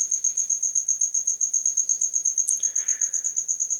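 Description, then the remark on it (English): A cricket chirps steadily in a fast, even pulsing rhythm, loud, with a brief faint rustle partway through and no voices. “I actually wanted to have the cricket just going for a while after you finished.”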